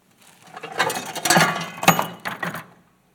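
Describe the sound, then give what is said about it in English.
Metallic rattling and scraping as a thin piece of corrugated aluminum, cut off the end of a hurricane window shutter, is handled in Florida, with a few sharper clanks amid a busy, uneven flurry lasting a couple of seconds. “You know, this is a piece cut off the end of a shutter. It's a corrugated piece of aluminum.”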